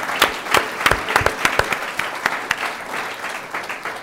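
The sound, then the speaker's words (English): A room of people claps together in a steady, dense patter of applause, moderately loud, with sharper individual claps standing out through the few seconds. “Friday, February, yes, we can applaud that.”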